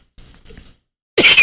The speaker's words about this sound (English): Still going. Great. I'm finally getting a handle on it. Seems the cough is here to stay. I can cough at will.